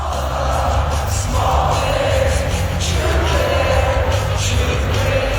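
A huge crowd at Ball Arena in Denver sings along together at the Colorado Avalanche home opener, thousands of voices blending into a loud, continuous roar with a faint melodic swell over booming, reverberant music underneath.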